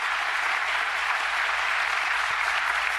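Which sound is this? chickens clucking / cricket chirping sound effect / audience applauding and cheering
audience applauding and cheering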